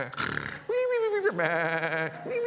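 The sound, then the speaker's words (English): A person imitates a sheep, letting out two drawn-out, wavering bleats, with a short breathy sound before them and nothing else in the background. “The sheep are snoring. I don't know what a sheep snores on.”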